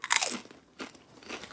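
Crisp crunching of a salted sweet potato snack chip being bitten and chewed, a loud initial crunch followed by a few softer chewing crunches, with no talking.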